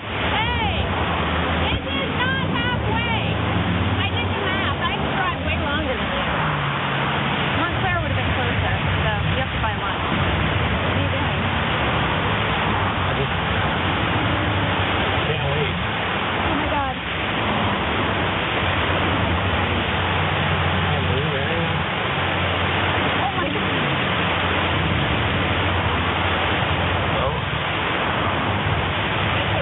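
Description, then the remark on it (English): A heavy downpour pours down in a dense, unbroken roar of rain, loud, holding steady for the whole stretch and drowning out nearly everything else. “You could barely hear that, of course, amidst the giant rain downpour that's going on.”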